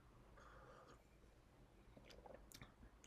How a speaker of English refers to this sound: My cup of tea, which I'm about to pick up and have a sip of.